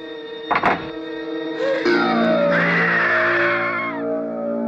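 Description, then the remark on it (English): In the trailer for the 1978 horror film The Toolbox Murders, a loud, sustained scream rises after a sharp thud, wavering and piercing as it holds for several seconds before trailing off, with no talking over it. “All right, everybody, you just heard the trailer for the Toolbox Murders from 1978.”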